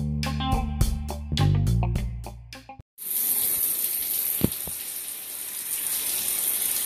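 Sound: shower water running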